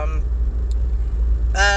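A car drives right alongside, its engine and tire rumble steady, loud and close throughout, with brief snatches of a voice at the start and end.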